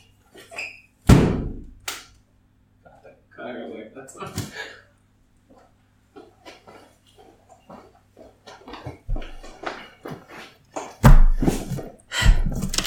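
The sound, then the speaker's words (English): An empty box thrown at a bug thumps hard against a surface several times at irregular intervals, each loud thud followed by softer knocks and scuffling in between. “Ladies and future boys, welcome to the School for Wayward Nerds, the only podcast that beats a bug that's noisy with a box.”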